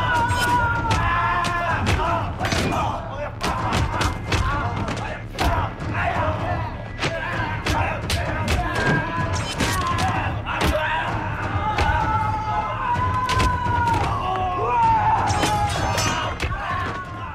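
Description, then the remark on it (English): A chaotic brawl in a film fight scene with several voices yelling and grunting over a steady low hum, punctuated by frequent sharp thuds and impacts throughout. “There's a lot of R-ing and shouting in the fight.”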